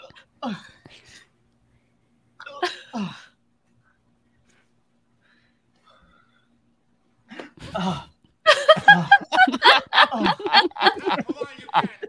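Three short, sharp hiccups spaced a few seconds apart in near silence, followed by a loud stretch of rapid, breathy laughter.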